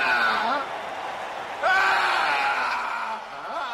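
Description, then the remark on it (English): A man screams in long, strained, wavering cries that rise sharply partway through, loud, over a steady wash of background noise: a film scene of a newly elected pope having a nervous breakdown. “The scream is actually the new pope having a nervous breakdown.”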